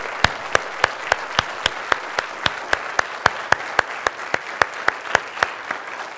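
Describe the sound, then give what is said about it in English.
An audience in the United States applauds steadily to recognize people thanked for their service and sacrifice, a dense wash of clapping with sharp, evenly spaced claps ringing out above it in a quick, regular beat. No one speaks. “Folks, could we recognize them with a round of applause?”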